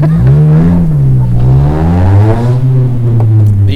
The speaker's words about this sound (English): That motorcycle might have been louder than we are. I think that's like one of those done-up Civics or something. That's a car.